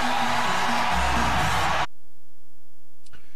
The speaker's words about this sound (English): Yep, that was on BTN Saturday night. The excitement and the thunderous roar from the crowd for Nick Lee.